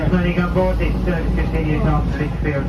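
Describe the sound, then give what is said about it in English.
A train pulling into Newsley train station, heard as a steady low rumble running throughout, with a person's voice talking over it. “The Evolve people rolling into Newsley train station.”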